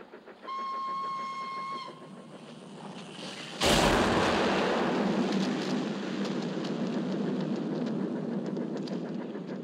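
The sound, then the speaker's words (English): In a film scene, a steady whistle-like tone sounds briefly, then a sudden loud explosion as a bridge is blown up while a train crosses it, followed by a sustained roaring, crackling rumble of the collapsing bridge and the train crashing down. No one speaks. “The trigger, and he dies, and then the bridge explodes.”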